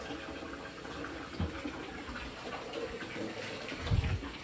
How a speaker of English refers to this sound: This water, in the realm of Gaia, has monumental healing properties.